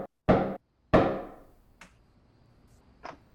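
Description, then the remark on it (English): Two loud, booming knocks on a door, each trailing off in a short echo, followed by a couple of softer, lighter taps. No one speaks. “All right, so later that night, you get a knock on the door.”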